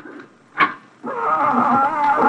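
A cat howls loudly in a long, wavering, drawn-out wail rich in overtones, preceded by a brief sharp yowl and softer murmuring.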